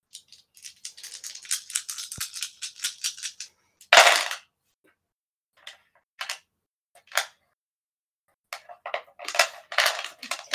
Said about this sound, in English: It's so many dice every time she rolls, guys.